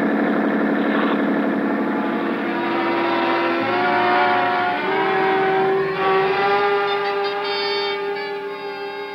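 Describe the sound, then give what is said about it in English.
A police boat's motor roars steadily at high speed, loud, its droning pitch shifting slightly as it runs on without pause, with no voices. “A 20-minute start isn't much when a schooner with auxiliary power is matched against a police boat.”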